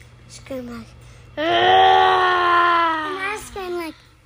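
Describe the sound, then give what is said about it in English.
A child lets out a loud, drawn-out "rah" scream like a pretend monster roar, lasting about two seconds, with brief short vocal sounds just before and after. “I screamed like, rah!”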